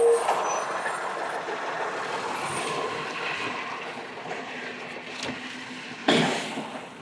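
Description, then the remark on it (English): A garbage truck rumbles steadily while collecting trash in an alley in Chelan, with hissing air-brake bursts and a sharp clank or release near the end. No one speaks. “Oh, you even get to hear trash being picked up here in Chelan.”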